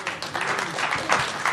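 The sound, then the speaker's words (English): A brief burst of applause, dense and steady for a moment and a half, with faint voices mixed into the clapping. “Let's get a round of applause.”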